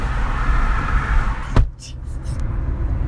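A steady vehicle rumble is broken by one sharp thump of a door shutting, after which the background goes quieter with a few faint, brief rustling sounds.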